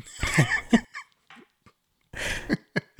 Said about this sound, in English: I'm sorry, I had a cough.